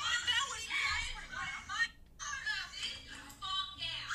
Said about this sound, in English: So I know you hear the kids kind of screaming over it, but she literally grabbed him like by two shoulders, set him in a chair, and said, sit the fuck down.